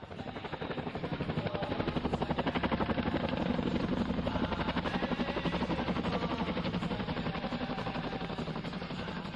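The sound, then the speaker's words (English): A Chinook helicopter airlifting weekly supplies arrives at remote ranges in Helmand Province; its heavy rotor chop fills the scene, a fast, steady thudding that swells slightly as it draws near and stays loud for the whole stretch, with no voices. “Weekly supplies are airlifted by a Chinook helicopter. They record its arrival.”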